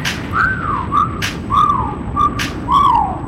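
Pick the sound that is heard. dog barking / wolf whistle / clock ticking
wolf whistle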